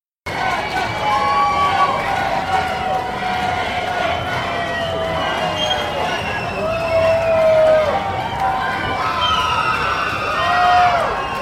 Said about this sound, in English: The trio keeps going deeper and deeper into the subway till they start to hear hooping and hollering.